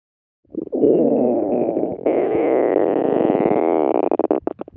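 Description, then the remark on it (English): A long, loud stomach rumble gurgles continuously for about four seconds, a low bubbling growl that shifts pitch partway through and breaks into quick fluttering pulses at the end. “A stomach rumble.”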